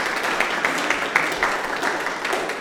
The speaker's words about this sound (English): So let's give him a round of applause as he comes to the stage.